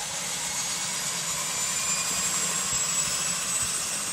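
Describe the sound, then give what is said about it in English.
A seaplane's right engine runs steadily, a loud continuous roar with a broad hiss and a faint high whine layered on top, holding constant throughout with no voices. “Right engine is turning.”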